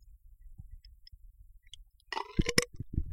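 A loud, throaty burp erupts after a couple of seconds of quiet low rumble, its croaky, gurgling tone pulsing briefly before trailing off into low grumbles.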